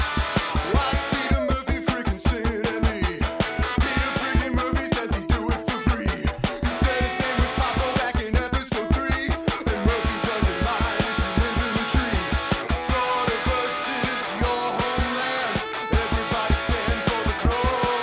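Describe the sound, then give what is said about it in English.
Upbeat intro theme music plays on its own, a full band with a steady driving beat and bright layered melody, holding a loud, even level throughout with no talking. “Oh, the screaming of a one … and the wonderful tunes from …, … on SoundCloud.”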